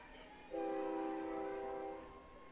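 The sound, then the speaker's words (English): A train horn blares in the background at Leon's Field during a ball game, one long steady tone for about a second and a half, rising over a low background hum before fading out. “Train horn sounding in the background here at Leon's Field as this one hit the opposite way to right field.”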